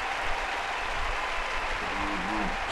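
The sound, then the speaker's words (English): Dense crowd applause played from a soundboard button fills the whole stretch, a steady, loud wash of clapping that holds constant, with a voice briefly starting to speak under it near the end. “Hey, you guys are getting a little too loud, a little too raucous.”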